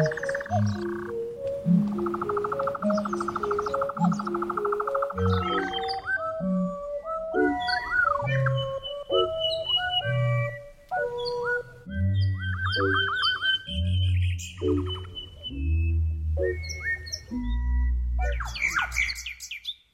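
A nightjar's steady churring trill and a nightingale's varied whistles and chirps, woven over a rhythmic musical backing with low, plucked bass notes; close and fairly loud throughout.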